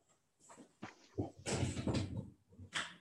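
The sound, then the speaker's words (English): A door being opened to let a cat in, since the cat refuses to use a cat flap, with a series of rattling, scraping bursts of moderate loudness spread over a few seconds, the busiest stretch in the middle and one last short clatter at the end. “My cat refuses to use a cat flap, but I put in the door for him. Open the door instead.”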